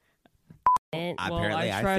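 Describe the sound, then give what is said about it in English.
A brief electronic phone beep, a quick double tone, sounds just before someone starts talking loudly over the rest of the moment. “I try to turn off your fucking phone.”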